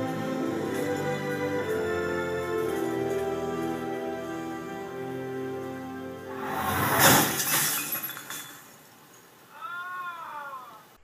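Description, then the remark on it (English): A loud burst of glass liquor bottles shattering, as a van hits a man pushing a shopping cart full of them, crashes in after several seconds of sustained, wavering tonal sound, followed by a brief rising-and-falling cry from the man as the smash dies away. “And it's a bunch of shatters, and then you just hear him go, off screen.”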